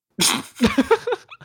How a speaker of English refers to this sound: What the fuck are you barking at?